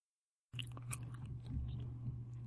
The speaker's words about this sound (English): What do you mean chewing? Just, I was trying not to chew so loudly that...